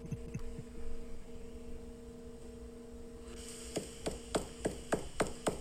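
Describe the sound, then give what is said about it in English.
A metal sound plate about a quarter inch thick rings with steady, sustained tones. Near the end comes a quick series of about eight sharp strikes, each adding a bright metallic shimmer over the lingering hum. “It's still ringing, man. It's like, it goes up.”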